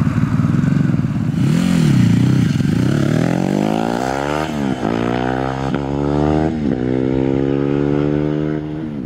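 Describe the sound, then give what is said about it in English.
A motorcycle engine loping at a rough idle, then revving hard and pulling away, its pitch climbing through several gear shifts. Loud, with no voices. “So yeah, the first one was a flyby, and then the second one was like a idle and take off.”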